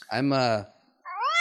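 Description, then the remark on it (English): A person mimics a cat's meow twice, clear: first a low, drawn-out meow, then after a brief pause a higher, rising one. “Meow. Make it happen.”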